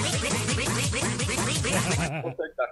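A rapid, dense string of loud, nasal duck quacks sounds for about two seconds, followed by a couple of fainter, scattered quacks as it trails off.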